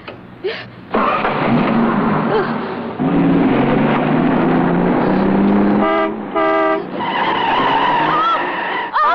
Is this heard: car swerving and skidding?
yes